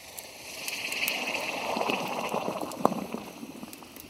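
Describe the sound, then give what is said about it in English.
A hot forged blade is quenched in water, giving a steady sizzling hiss with bubbling crackles and a sharp pop partway through, lasting about four seconds with no talking. “Now, let's get it into some water”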